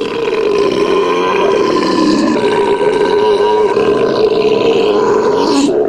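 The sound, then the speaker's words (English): A single long, loud, rumbling belch in a belching contest, sustained for several seconds, forceful with a growling, roar-like quality, cutting off abruptly at the end. “Ladies and gentlemen, now the moment you've all been waiting for. The belching contest.”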